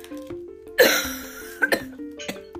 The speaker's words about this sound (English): this episode should just be called … coughing for however long straight